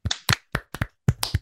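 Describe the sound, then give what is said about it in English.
A short burst of hands clapping, about eight or nine sharp claps in a loose, uneven rhythm, fairly loud, with no talking; clapping to crown the winner of a bracket, the number 5 Haunted Mansion. “As we do at the end of every bracket, we have to crown the winner and clap for it.”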